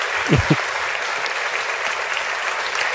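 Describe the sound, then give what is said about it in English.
A burst of canned applause played from a soundboard runs steadily from start to finish, a dense crackling wash of clapping with a faint cheer-like sweep near the beginning and no one speaking. “I'm gonna hit the clap on my board.”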